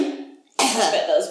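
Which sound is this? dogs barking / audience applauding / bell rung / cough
cough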